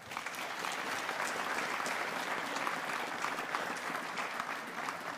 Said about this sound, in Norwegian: Gi dem et skikkelig klapp, da.